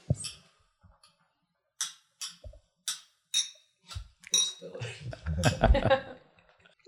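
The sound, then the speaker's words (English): Several bright glass clinks ring out in a loose sequence as glasses are touched together in a toast while tasting the Ace Boone Sazerac Coon cocktail, followed by shuffling and murmured activity. “Cheers. Cheers.”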